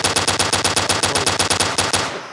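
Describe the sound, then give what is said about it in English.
A loud machine gun sound effect: a rapid, steady string of around eighteen sharp cracking shots over two seconds, with no voices, ending in a brief fading echo. “Choppers.”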